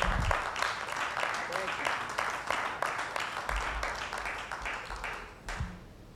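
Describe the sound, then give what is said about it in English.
A church audience claps hands in praise to the Lord, a dense, steady wash of many hands applauding throughout, fairly loud, with a few murmured voices underneath before it tapers near the end. “Let's give the Lord a hand clap of praise here.”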